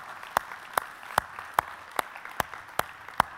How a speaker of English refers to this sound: Come on, help me clap that in a little bit.